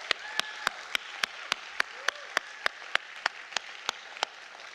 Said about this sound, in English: Can we have one more sort of clap of gratitude for the folks who are baptized?